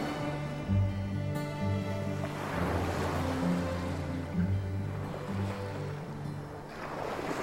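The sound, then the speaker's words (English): Steady ocean surf rolls and washes continuously, with broad hissing swells rising and falling over a low rumble, with no voices present. “I have often found the ocean to be relaxing after a great battle.”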